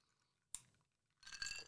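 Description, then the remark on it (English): A single sharp clink of a big tall glass filled with ice and Malort, then a short burst of crackly, rattling ice and a quick sip, all fairly quiet with no talking. “So myself, I have poured myself a nice big tall glass, all ice, of Malort.”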